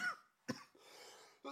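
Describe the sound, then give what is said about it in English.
A person coughs sharply, then clears their throat with a rough, raspy rasp, followed by another brief cough; fairly quiet, with no speech. “Can't have a cough drop either.”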